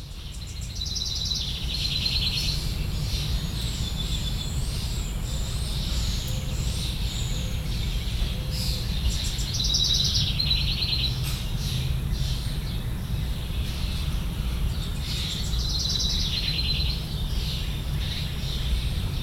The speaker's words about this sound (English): You've been listening to Backyard Birdsong, May 2020, Bloomington, Indiana.